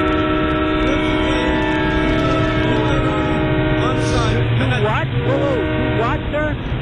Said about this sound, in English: No, I didn't get anything, sir. Do what? Okay, I'm just having a tough time hearing you. I'm at the train station.